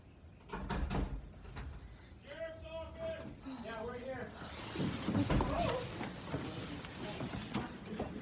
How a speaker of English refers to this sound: And that's when they were taken by surprise by a knock at their door. A student recorded what happened on their phone.